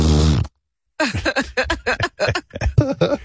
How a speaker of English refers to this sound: Blowing my nose. Thank you, boys. My nose again.